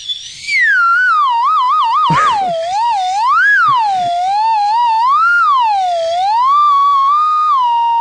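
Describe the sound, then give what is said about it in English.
The official Sick and Wrong slide whistle plays a loud, continuous tone, warbling fast at first, then gliding slowly up and down in wide swoops, with a couple of brief pops partway through. “Yeah, the official Sick and Wrong slide whistle.”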